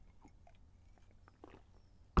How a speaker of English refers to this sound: I'm going to have another slurp of tea.